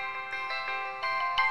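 A T-Mobile phone ringtone plays a bright electronic melody of sustained, buzzy notes that change in a steady rhythm, fairly loud with no voices.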